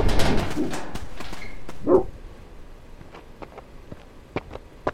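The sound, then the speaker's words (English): Dogs bark loudly in a rough cluster over the first two seconds, then things fall quieter, leaving only a few faint, scattered short sounds. “Are those your dogs? I'm terribly sorry. They ran off before I could stop them.”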